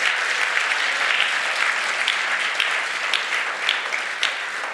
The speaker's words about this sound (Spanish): Si lo cree, dar un aplauso fuerte, Señor.